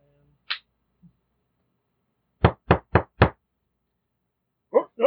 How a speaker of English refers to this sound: So a door opens. Door opens before your third knock.